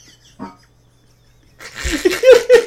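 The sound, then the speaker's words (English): A brief low thump, then after a pause a loud, rough, buzzing fart from a person sitting on an inflatable plastic workout ball, ending in a few squeaky, rubbery tones. “is sitting on one of those like workout plastic balls, the inflatable ones, and he farted and it went, bah!”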